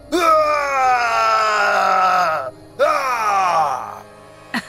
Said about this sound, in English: A man is screaming like crazy outside.